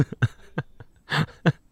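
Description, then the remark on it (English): A quick, uneven run of soft slapping thuds as people slap their hands against their breasts, about seven hits, with one longer, rougher burst near the end and no talking. “If you're just listening on audio, we're slapping our titties.”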